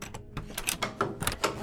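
Several locks on a heavy oak chamber door click and bolt in a quick, uneven series of sharp mechanical clicks and clunks, about eight in under two seconds, moderately loud with no voices.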